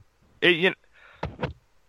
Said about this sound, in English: I've been coughing up a storm this past week.